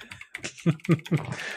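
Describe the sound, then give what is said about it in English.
Quick clacking of fingers typing on a computer keyboard to look up the name of a puzzle game on Xbox, a short burst of several keystrokes in an uneven rhythm with a few louder taps standing out. “What are you doing? Like typing puzzle game on Xbox?”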